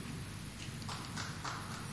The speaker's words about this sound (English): Who clapped there?